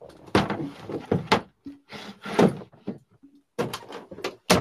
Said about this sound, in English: All right, I'm back. You went through a doggy door. Yes, a very real dog door.